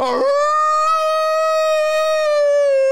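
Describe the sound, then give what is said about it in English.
A person howls like a wolf, one long loud note held steady for about three seconds, with no other sounds around it. “I arched my back and started howling like a wolf.”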